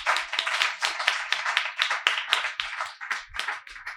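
A crowd claps steadily for an author, many hands slapping in a dense, continuous patter that swells and dips slightly but keeps going throughout, moderately loud, with no voices over it.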